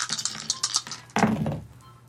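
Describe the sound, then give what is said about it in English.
A quick series of hard plastic clicks and rattles as dice tumble during a tabletop role-playing game, then a heavier clatter as they hit and skitter across a table before settling. No one speaks. “Throw on the dice roll.”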